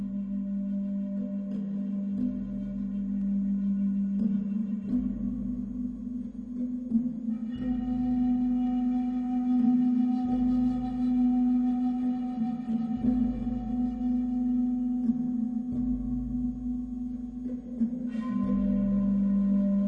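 Slow ambient music with a deep, steady drone and long held tones that shift every few seconds, playing alone at a constant, moderate level with no voices.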